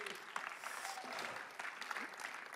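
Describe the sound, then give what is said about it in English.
An audience claps steadily, a dense crackling wash of many hands that holds at a fairly even level for a couple of seconds, with a few faint voices calling out underneath. “Big round of applause.”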